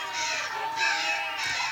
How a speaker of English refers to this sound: They're pecking at me. Where are all these birds coming from? They are attacking!